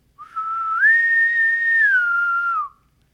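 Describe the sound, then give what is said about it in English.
A person whistles an imitation of a bosun's pipe: one clear, sustained note that slides up, holds steady for a couple of seconds, then drops away, heard alone. “Wait, let me do my bosun whistle.”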